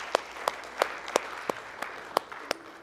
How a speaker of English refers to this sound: Amen. Come on and give him one more hand clap if you wouldn't mind.